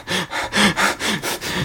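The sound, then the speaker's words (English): Quick, shallow panting breaths, about six in under two seconds, fairly loud with a slight voiced edge, like someone imitating rapid, panicked breathing. “when I stop and breathe, is I kind of notice how shallow my breathing is throughout the day.”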